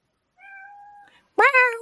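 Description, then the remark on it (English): Caitlin's cat Sam meows twice: first a softer, steady drawn-out mew, then after a short pause a louder, sharper meow that rises and trails off. “Sam is also excited about some cancellations. Sam is Caitlin's cat. Did he finally get into the show?”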